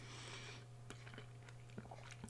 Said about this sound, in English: Also, get out your waters. Get out your bottles of water and take a sip. Because I'm about to take a sip of mine.